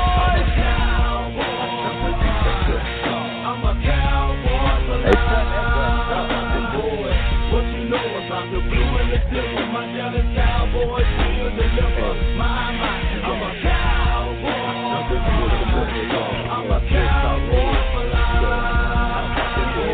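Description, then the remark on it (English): A loud, full-band anthem-style song for the Dallas Cowboys football team plays continuously for the whole stretch, with driving beats and what sounds like energetic singing over dense, bright instrumentation. “Are y'all ready for the most anticipated anthem of all time? America's team, yours and mine, the Dallas Cowboys.”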